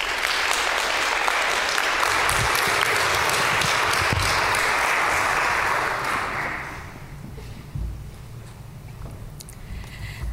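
An audience breaks into dense, steady applause, many hands clapping loudly for about six seconds before the sound tapers off into scattered claps and a quiet murmur.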